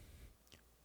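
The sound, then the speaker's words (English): A single soft, faint click from a handheld game console's controls against a quiet, low background hum with no talking. “So I'm just clicking on it right now.”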